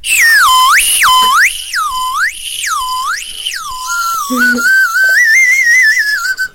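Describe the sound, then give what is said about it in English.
A shrill Whistle Pop candy whistle is blown, swooping up and down in four loud, siren-like cycles before settling into a lower, wavering tone. “But you were saying before, what's the best use for a whistle pop? Doing this.”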